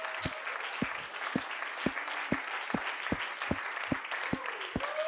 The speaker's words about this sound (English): I'm preaching to the choir anyway. Y'all ought to at least clap.